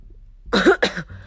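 Two quick, close coughs in succession, the second slightly shorter, with quiet room tone before and after.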